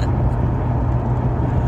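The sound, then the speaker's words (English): A big truck roars past on the road, a loud, steady low rumble of engine and road noise filling the whole moment without any voices. “But it's just like, oh, it goes big truck blow by me.”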